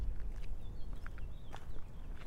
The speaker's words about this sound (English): Just consciously became aware of the sound of my foot on this gravel.